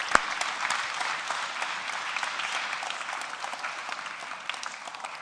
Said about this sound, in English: Can we give them both a big round of applause?